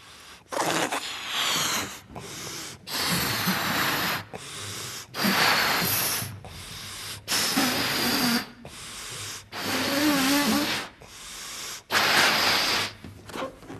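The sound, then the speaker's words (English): A balloon is blown up by mouth: about eight forceful, breathy puffs in steady succession, each a loud rush of air with a faint rubbery squeak, separated by short pauses for breath. “Now, I want you to notice that as the balloon expands, the circle expands.”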